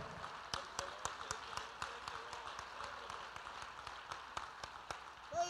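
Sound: audience clapping hands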